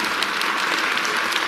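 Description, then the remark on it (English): Steady, dense applause from a crowd applauding that Satan will be bound for 1,000 years, many hands clapping at once in a continuous bright patter that holds an even loudness throughout, with no voices standing out. “And you better applaud that as much as you did Washington, D.C. being absent.”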